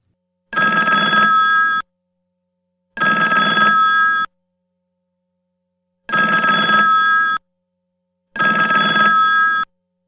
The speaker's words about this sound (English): Answer the goddamn phone. I think it's your turn. Hey, the guy could be down. Pick up the phone.